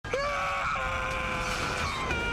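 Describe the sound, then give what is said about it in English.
A male movie villain gives a single loud, drawn-out scream held steadily for about two seconds, strained and piercing, with no talking around it. “I love the scream oh. that he does.”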